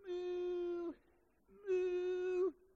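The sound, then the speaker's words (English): A voice imitates a cat's meow twice, two drawn-out, steady-pitched cries of about a second each, separated by a short pause, fairly loud with no other talking. “And behold, somebody just meowed.”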